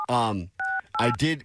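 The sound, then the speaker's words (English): Three short, steady touch-tone beeps from a phone keypad being dialed to call someone, each a clean two-note electronic chirp, with a person talking before and between the presses. “I got to get her on the phone here because we're fighting about this now.”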